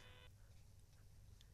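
A caller's phone line drops out: a brief buzzy electronic tone cuts off abruptly, leaving a quiet low hum and faint static with no voices.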